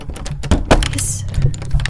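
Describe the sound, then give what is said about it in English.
A locked door handle rattles and shakes at 11:41 in a quick, irregular run of metallic clicks and clatters, with one sharper jolt partway through and a brief hiss above, no voices. “I hear a rattle and then see my locked door handle shake like the person behind it.”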